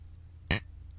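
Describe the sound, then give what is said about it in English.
A single bright, short clink of glasses tapped together in a toast, ringing briefly with a high metallic tone before fading over a quiet background hum. “We didn't cheers.”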